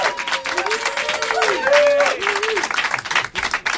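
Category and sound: crowd, studio audience applauding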